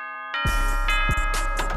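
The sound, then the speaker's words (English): A fancy doorbell at a large McMansion-style house chimes with sustained ringing tones, joined after a brief moment by a loud, dense burst of clattering noise that carries on beneath the lingering bell. “Wow, look at this fancy doorbell.”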